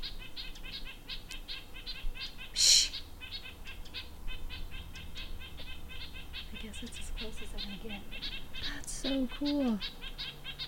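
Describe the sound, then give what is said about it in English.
A busy flurry of small birds calling excitedly in response to pishing, chirping rapidly and continuously, several calling at once, with a brief harsh burst early on and louder squawky, wavering calls near the end. “They're all getting excited now.”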